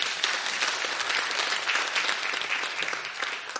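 A room audience gives lukewarm applause, a steady patter of clapping at moderate volume that holds evenly for a few seconds without building into cheers.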